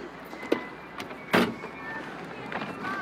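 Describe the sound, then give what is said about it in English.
A single sharp, loud thud of a car door slammed into another parked car, preceded by a lighter click, over a low steady outdoor hum with faint squeaks afterward. “I know you didn't think anyone would catch you, but you just slammed your door into my car.”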